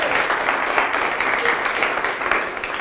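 An audience applauds steadily, many hands clapping together in a dense, continuous wash of sound that stays fairly loud and even from start to finish.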